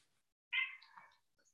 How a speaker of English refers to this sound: And my cat's chiming in too as well.